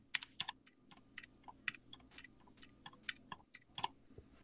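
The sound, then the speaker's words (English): Crisp mechanical keyboard typing in quick irregular bursts of clicky keystrokes, alternating between blue switches on one keyboard and gold switches on another, the blue sharper and the gold lower and crunchier. No one speaks. “just bearing in mind that they're in two different keyboards. So I'll start with blue and I'll alternate blue, gold, blue, gold.”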